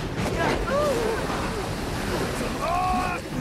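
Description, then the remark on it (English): Roaring monsoon wind and crashing waves at sea, a loud, steady wall of churning noise that never lets up, with a few indistinct voices rising briefly above it. “This is exactly how I want to learn. In a monsoon.”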